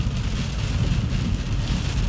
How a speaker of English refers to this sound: I really wish this rain would shut the hell up, too.